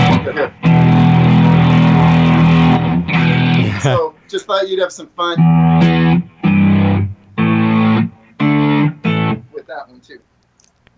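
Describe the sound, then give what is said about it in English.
A loud, distorted, warm electric guitar tone from a Firehawk amp modeler, heard through a phone, rings out in a long sustained chord, followed by shorter choppy bursts alongside a brief spoken line. “That, so by the way, that Firehawk really sounds nice, by the way. Even through the phone.”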